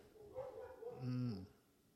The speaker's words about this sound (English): Fucking dogs. Fucking dogs. Somebody must be walking by. Yeah, somebody with a dog.